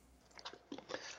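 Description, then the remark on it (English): Someone takes a quick sip from a water bottle, a few soft, wet mouth clicks and slurping gulps over about a second, quiet and with no talking. “As I catch you with like a water bottle in your mouth and you're taking a sip.”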